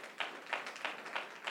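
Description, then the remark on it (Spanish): An audience claps to the Lord for a newly married couple, a steady, even rhythm, about five soft bursts in under two seconds, with no voices over it. “denle un aplauso al Señor por ellos, hermano.”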